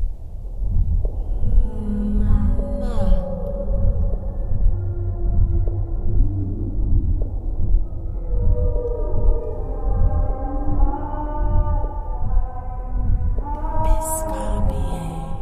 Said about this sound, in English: You can hear the sounds of real whales and also … voice in there.